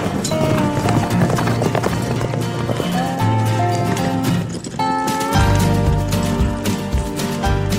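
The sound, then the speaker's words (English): Rapid, rhythmic hoofbeats of a galloping horse pound across dirt in a rodeo arena as a young rider is about to rope, steady and fairly loud, against a busy, echoing backdrop with tonal sounds and faint voices. “She's about to rope.”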